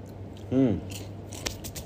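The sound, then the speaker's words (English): Munching of Kurkure, a crunchy snack, with soft crackling bites and one sharper crunch, plus a short low hum of a voice early on over a steady background hum. “So I'm very sorry if you hear me constantly munching in Kurkure, but I guess I have to do something to keep me up at night.”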